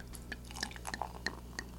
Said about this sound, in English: I can't pour beer without giving it a lot of foam. Look at all the foam that I got.